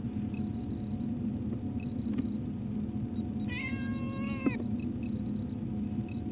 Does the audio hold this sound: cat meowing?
yes